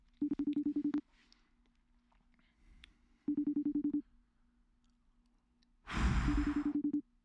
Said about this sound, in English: I just got to make a quick phone call. Hopefully, you know, it goes through.